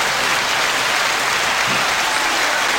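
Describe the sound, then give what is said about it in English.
A crowd claps steadily and loudly, a dense wash of many hands applauding together with no voices on top, sustained evenly for the whole few seconds. “Well, that's pretty enthusiastic support. Great crowd here today.”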